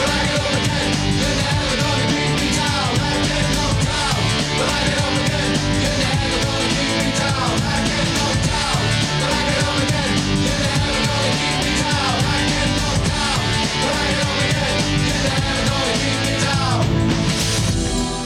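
A loud, dense pop rock song plays steadily throughout, with full-band instrumentation, driving rhythm and layered, shouted-sounding vocals blending into the mix.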